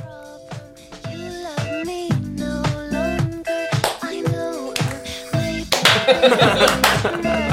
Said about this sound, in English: This is a song that did not make it to the soundtrack for mostly financial reasons.